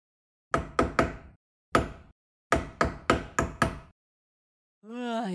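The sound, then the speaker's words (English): Loud knocking on a door at 6 a.m. in insistent bursts: three quick raps, a single rap, then five more in rapid succession, followed by a pause and a voice starting up. “Who the hell is knocking on my door at 6 a.m.?”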